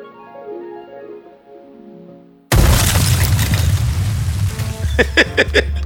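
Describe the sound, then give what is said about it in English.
Soft melodic music plays, then abruptly gives way to a loud crash of a brick smashing through a glass window, followed by a noisy tumble of debris and a few sharp clinks near the end. “And a brick through the window.”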